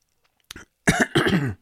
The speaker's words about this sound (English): And the push mower kicks up so much dust that, seriously, I'm coughing it out. I have dirt and stuff for the next 12 hours. I will be expectorating dirt out of my nose and mouth.